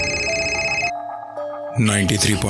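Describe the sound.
A steady electronic ring tone of an outgoing phone call to a friend, made just outside an apartment building in Chennai, sounds for about a second, clear, with louder layered sound and a voice on either side of it.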